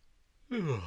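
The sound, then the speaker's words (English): A single yawn: a sudden voiced exhale, sliding downward in pitch and fading, following half a second of near silence. “You were yawning, which tells me it's time to wrap things up.”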